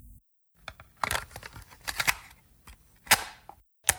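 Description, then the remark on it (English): A cassette tape is pushed into a player: a run of sharp plastic clicks and clacks at uneven intervals, with a louder snap near the end as the mechanism engages. No voices. “Let's pop in the synopsis tape.”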